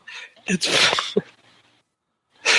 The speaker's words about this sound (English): Sounds like an old screen door. No, it's just our bedroom door.